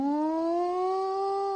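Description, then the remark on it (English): A loud siren wail, its steady tone slowly rising in pitch over a second and a half, heard on its own with no talking. “Right, you got to have a siren.”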